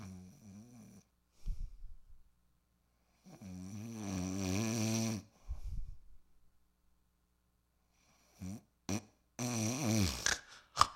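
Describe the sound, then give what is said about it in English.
A person imitates snoring with a series of nasal, rumbling snorts and breathy rasps, alone, the bursts growing longer and louder with short silences between them. “You know when you're sleeping next to somebody who snores and it just like keeps getting louder.”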